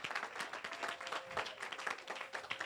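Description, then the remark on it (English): An audience breaks into sustained applause, giving a hand clap of praise, many hands clapping in a dense, crackling wash that stays steady and fairly loud throughout, with a faint murmur of voices underneath. “Come on and give him a hand clap of praise in Jesus' name.”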